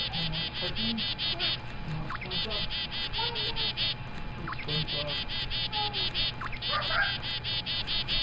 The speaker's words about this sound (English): All right, we got sound number two on Spotter Sound. And this sound is a bird sound, and it's also another sound on Spotter Sound.